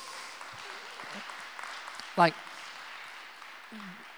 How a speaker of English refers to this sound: Can we give God like a round of applause?